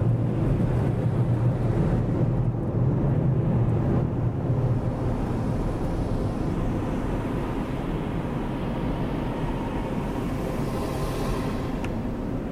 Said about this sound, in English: Yeah, these guys are all wiping down the car now. They got their earplugs on because these fans are loud as fuck.